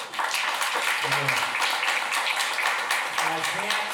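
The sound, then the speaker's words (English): A crowd applauds steadily and loudly, a dense wash of many hands clapping that continues for the whole stretch, with a few faint voices mixed into the noise. “Round of applause”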